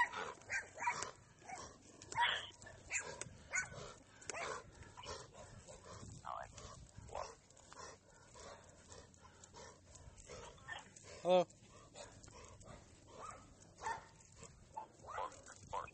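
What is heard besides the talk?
dogs barking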